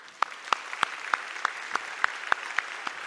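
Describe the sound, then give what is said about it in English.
A United Methodist church audience applauds steadily for a young woman going to seminary to become a pastor, a dense wash of clapping with a few sharper, evenly spaced claps standing out, at moderate volume throughout, with no one talking. “You can give her applause.”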